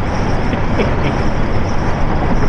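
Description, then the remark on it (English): Steady, loud rumble of a pickup truck driving up a hill, heard from inside the cab: constant engine drone and road roar with no breaks and no voices. “I'm going to have to get in the truck and drive up on top of a hill.”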